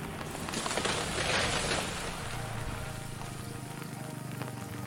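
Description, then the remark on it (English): Heavy typhoon rain pours in a dense, steady roar with a brief swell of harsher hiss early on, then continues as constant loud wash and low rumble throughout. “This was one of two typhoons that hit at about the same time.”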